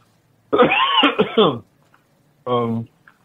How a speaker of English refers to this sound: This cough will go away in a minute.